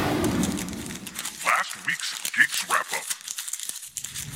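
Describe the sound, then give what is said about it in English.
Copper, a golden dog, chews noisily on a stinky bully stick: irregular wet crunches, clicks and gnawing sounds in quick uneven bursts, fairly loud against a quiet background. “We've celebrated by going to the dog park, hiking around Como Lake, and doing a little podcasting while Copper enjoys a very loud and stinky bully stick.”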